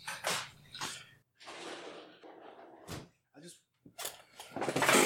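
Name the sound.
dog making noise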